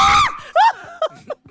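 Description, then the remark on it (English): A voice imitates a man screaming with two loud, shrill yells, a long one and then a shorter rising one, followed by a few faint breathy vocal bursts. “I love when he screams.”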